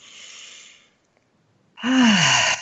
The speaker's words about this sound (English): So wherever you are, I want to invite you to just become conscious of your breath and take a good, deep, refreshing breath if you can do that.